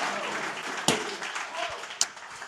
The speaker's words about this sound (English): If you receive that, go ahead and give the Lord a great hand clap tonight. Hallelujah.